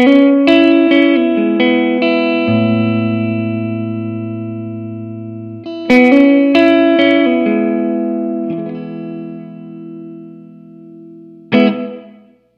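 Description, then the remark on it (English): An electric guitar plays a few strummed chords and single notes through a room reverb pedal set to its club-size room setting, letting each chord ring out and fade, ending with one last strike and a decaying tail. “Go to the club size.”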